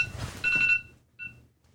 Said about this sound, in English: I don't know how an alarm got set on my phone, but okay. That scared the fuck out of me.